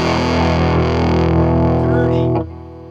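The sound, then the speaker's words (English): A loud, dirty guitar played through a fuzz box drones on a sustained chord, thick with buzzing harmonics, then cuts off abruptly near the end, leaving a fading hum. “That's dirty, dirty fuzz box.”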